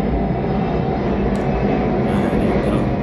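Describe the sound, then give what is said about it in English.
An airplane roars overhead, a loud, steady rumble with deep low-end weight that holds at an even level throughout, with no voices over it. “Now, but first, before I get to my answer, just gonna throw out there a few stats as I let the plane roll over for a little bit.”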